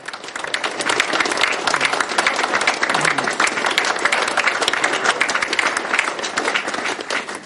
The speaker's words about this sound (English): I wanted that the friends will give applause to the friends from the Israeli Kli because they helped us so much.